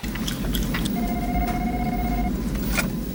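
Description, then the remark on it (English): A telephone ringback tone heard over a call line: one steady, even electronic ring lasting just over a second, sitting above a constant low rumbling hum with a few faint clicks. “Is it ringing? That's ringing.”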